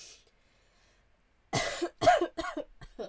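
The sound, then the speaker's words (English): After a moment of near silence, someone breaks into a loud fit of harsh, raspy coughs, four or five in quick succession. “Sorry, I told myself I was gonna mute if I coughed.”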